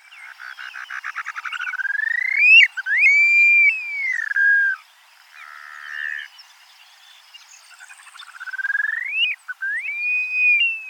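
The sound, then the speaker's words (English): An upland sandpiper (Bartramia longicauda), a grassland bird, gives its ethereal, wolf-whistle-like cry on the American prairie: rapid bubbling trills rising into long, sliding whistles, repeated twice with a pause between, clear with no talking. “Here's the ethereal cry of the upland sandpiper, heard on the American prairie.”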